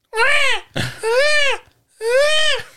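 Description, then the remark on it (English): Baby-like crying heard from inside the walls: three loud, high-pitched wails, each rising then falling in pitch with a strained, tonal quality, separated by short gasping pauses. “What the fuck kind of rat is crying like a baby?”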